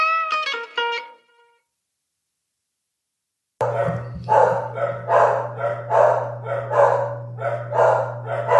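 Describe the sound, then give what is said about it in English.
After a brief tonal snippet and a few seconds of silence, two dogs bark in turns in a quick, steady string, interrupting someone trying to record, over a constant low electrical hum. “We got tag team barking.”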